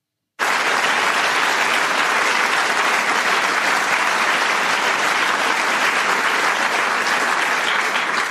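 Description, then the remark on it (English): Sustained applause from a large crowd at a ceremonial swearing-in starts abruptly and keeps a steady, dense clatter of clapping at an even loudness for about eight seconds, with no voices standing out. “By the way, did the Supreme Court justices applaud?”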